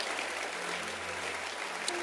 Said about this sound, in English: No, if you keep clapping and you keep standing, I can't preach. So you let me finish preaching, then you put your hands together once.